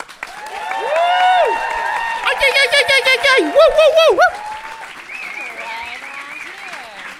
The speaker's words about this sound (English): Let's give a huge, huge fucking Torontonian round of applause for our guest tonight